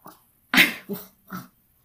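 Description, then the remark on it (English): A dog lets out three short barks in quick succession, the first sharp and loud, the next two softer and lower, with no one talking. “But don't bark anymore. Please stop.”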